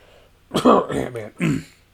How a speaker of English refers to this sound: But was that too subtle? Did you catch that? Cough, Modok.